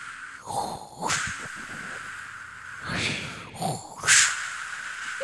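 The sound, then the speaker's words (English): A voice imitates ocean waves with breathy, hissing whooshes that swell and fade, about three or four surges spread unevenly, the last one loudest, with no words spoken. “All right, let's give some wave noises for them.”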